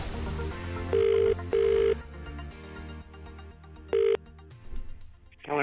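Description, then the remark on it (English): An outgoing phone ringback tone sounds twice in quick succession, then once more after a pause, each burst a steady electronic purr over a bed of soft background music, with no talking. “We try calling Ted's phone, but he didn't answer, so we thought we'd try yours.”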